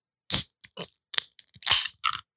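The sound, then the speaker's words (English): A beer can being cracked open: a few sharp metallic clicks and crinkles, then a loud fizzing hiss, followed by a short final crackle. No one speaks. “All right, so I guess I'll crack this open.”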